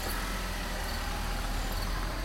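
car driving away

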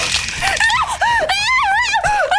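person screaming in terror

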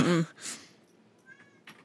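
cat meowing loudly

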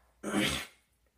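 sneeze

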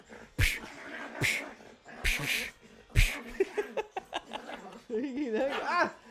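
dog barking

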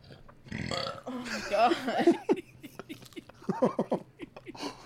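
burping

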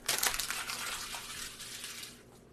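paper being crumpled up

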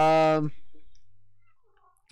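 cat meowing

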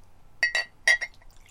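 beer poured

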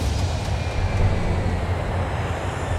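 airplane landing

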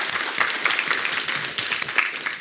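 audience round of applause

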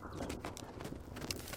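horse hooves approaching

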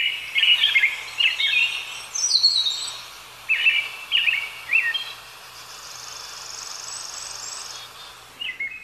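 crickets chirping

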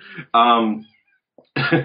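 cat meowing

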